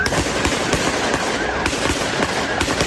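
A rapid barrage of gunshots, dozens of sharp cracks fired in quick irregular succession, loud and continuous over a harsh, noisy background with no voices.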